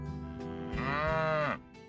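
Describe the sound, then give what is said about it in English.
A cow moos once, a loud, drawn-out low bellow lasting under a second, with a faint low rumbling hum before and after. “Some stories say she brought two unforgettable pets with her to Radcliffe House, a beehive and a cow.”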